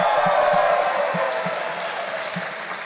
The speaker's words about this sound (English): There is a cheer from the crowd.